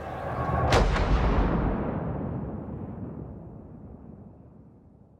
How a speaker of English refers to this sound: At the signal from the constable of the tower, the cannon mounted on the walls fire, signaling to the people of the city that the queen is dead.